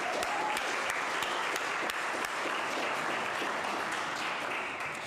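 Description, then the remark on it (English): A crowd applauds steadily for Wednesdays at West, a dense wash of many hands clapping at an even, sustained level for the whole stretch with no voices on top. “Round of applause for Wednesdays at West.”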